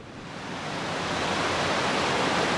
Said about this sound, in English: …, the man in charge of the Army Corps' treatment facility, shows me where water from the Potomac rushes into the plant.